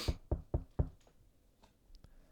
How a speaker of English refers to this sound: I'm knocking on God's door and I'm saying, look what I brought